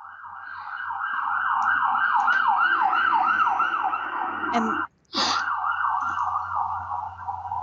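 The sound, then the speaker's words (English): An ambulance siren wails as the ambulance goes by, in a steady rising-and-falling pattern, fairly loud, with traffic rumble underneath and a brief cut near the end; a voice briefly speaks. “that was an ambulance going by, so we'll call it the love ambulance.”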